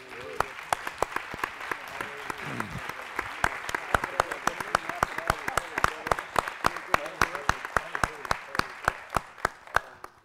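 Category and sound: crowd, audience clapping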